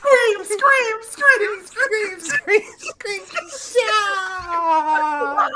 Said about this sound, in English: Scream!